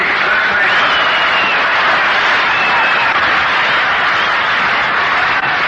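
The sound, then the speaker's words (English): Sustained applause from a large ballpark crowd greeting Bob Elliott's appearance at the plate for the Boston Braves in the last half of the second inning, a dense, steady wash of clapping and crowd noise that holds at an even, fairly loud level for several seconds, with no voices standing out. “That round of applause greets the appearance at the plate for the Boston Braves in the last half of the second inning, Bob Elliott.”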